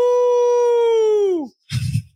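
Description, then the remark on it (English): A person imitating a howling dog lets out a loud, sustained howl that holds steady and then slides downward, followed after a brief pause by a short, breathy burst of sound. “That's your dog? More of a howl?”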